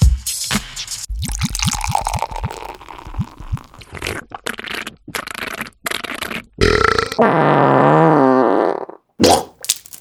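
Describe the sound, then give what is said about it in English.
Beer glugs out in a quick series of low, rhythmic gulps and splashes into a curved pint glass, followed by a hissing, fizzy rush as a healthy head forms. A long, wavering, burp-like tone comes near the end. “There we have it, the secret to the perfect pint. A lovely curved glass, a healthy amount of head.”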